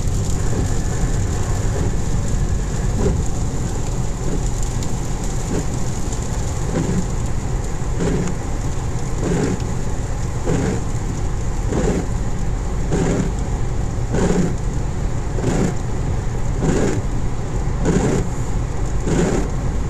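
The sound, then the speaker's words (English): Car windshield wipers sweep in a steady rhythm, a soft swish roughly every second, over a constant wash of rain and engine rumble. No one speaks. “Yeah, don't want to pause too much, as you probably hear the windshield wipers.”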